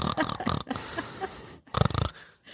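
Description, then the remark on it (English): A voice imitates snoring close to the microphone, making loud, rattling, snorting inhales in a few bursts with short pauses, sounding almost piglike. “One of them is just me just snoring in the mic.”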